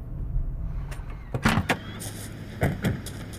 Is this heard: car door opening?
yes